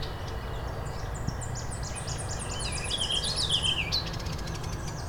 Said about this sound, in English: Another Tennessee warbler here.